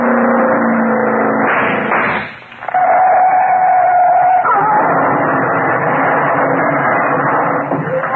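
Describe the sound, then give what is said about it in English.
A car speeding at around 80 crashes, overturns five times and catches fire: a loud, continuous engine roar and grinding clatter, broken by a brief drop about two seconds in, then a high whining tone over the steady racket. “Caught fire the minute she smashed. Turned over 5 times, I counted.”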